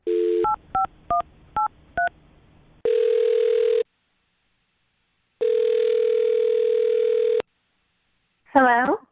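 A phone dial tone gives way to a rapid series of touch-tone beeps, then two long, steady ringback tones with a pause between, before a brief warbling sound as the call connects, as the radio show Brooke and Jubal in the Morning calls a woman.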